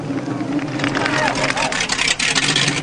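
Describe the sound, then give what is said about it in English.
A police car draws near, its engine rumbling loudly and steadily alongside broad road noise, with brief faint wavering tones rising over the din. “Here come the cops.”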